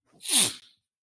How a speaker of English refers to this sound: why you doing all this sniffling and stuff? Did you get cold while you was out there on the trail? I've been having a case of the sniffles for the past 5-6 days.